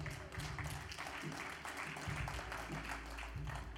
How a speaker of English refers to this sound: All the women was clapping.